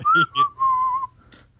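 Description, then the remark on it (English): Someone whistles a short three-note phrase: two quick clear notes followed by a longer held one, loud and bright, with no talking over it. “Yeah, they might as well all started whistling when she turned around.”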